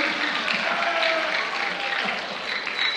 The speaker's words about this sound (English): Why are you clapping?